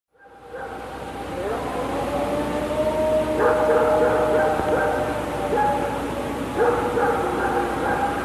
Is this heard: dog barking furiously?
yes